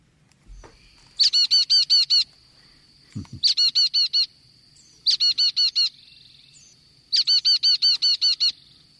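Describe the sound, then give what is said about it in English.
A Carolina chickadee calls in four quick bursts, each a run of six or seven raspy, repeated notes, loud against a faint low background, with a brief thump between the first two. “that would be your chickadee, your Carolina chickadee.”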